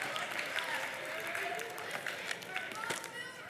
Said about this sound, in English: Hey, we can clap for that. Come on, give it up. Good. That was a great story.